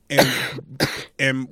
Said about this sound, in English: And we are as a people, while you continue to cough up your lungs, we are as a people are constantly conservative.